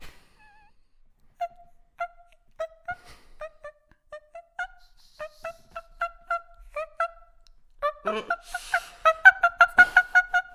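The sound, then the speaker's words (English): A voice imitates squeaky glass being wiped: a rapid series of short, high-pitched chirping squeaks in a steady rhythm, growing louder and busier toward the end, with no talking. “But the impression is cleaning glass.”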